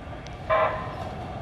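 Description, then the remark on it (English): A single short blast of a Gold Line train horn, loud and bright against a steady low rumble of background noise, cutting off after a fraction of a second. “Here comes the train.”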